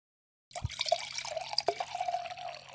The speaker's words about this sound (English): That's either her refilling my wine or her peeing into a glass. You'll never know.